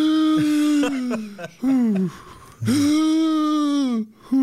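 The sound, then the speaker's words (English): A person imitates the heavy, nervous breathing of a sweating passenger in a Jeep starting up the Lion's Back trail: a run of loud, voiced gasps and whimpering breaths in uneven bursts, each rising and falling in pitch. “he's sweating, a lot, and he's breathing like this.”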